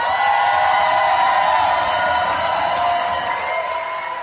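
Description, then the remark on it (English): A crowd applauds steadily with a few cheers and whoops mixed in, a dense, loud wash of clapping that holds for several seconds and eases off slightly at the end. “All the things we love about ourselves, and give that a round of applause.”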